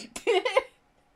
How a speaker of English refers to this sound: I have the hiccups.